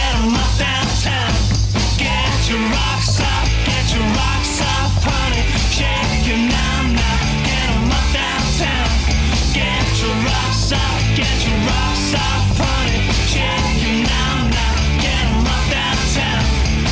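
A loud, dense rock song plays continuously, with driving drums and distorted guitars filling the whole stretch at full volume, a shouted vocal riding on top.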